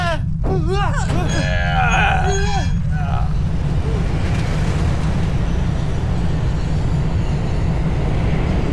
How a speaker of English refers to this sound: This place is gonna collapse! We gotta go! Quick! Everybody hop in the minecart!